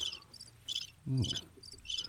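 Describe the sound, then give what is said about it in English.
Crickets chirp in a steady, repeating rhythm of high, buzzy pulses, fairly soft and outdoorsy, with a brief low droning tone rising underneath midway through. “No, it's the silence of critics because crickets or crickets? Crickets, right.”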